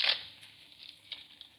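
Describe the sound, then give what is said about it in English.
Faint, dry rustling and crackling as a man carrying a rifle pushes through brush, starting with a brief louder swish and then continuing as scattered soft snaps and scrapes, with no voices. “Yeah, I hear it. Someone coming through the brush.”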